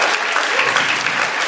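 A crowd claps steadily in dense, continuous applause, loud and close throughout the short stretch with no voices standing out.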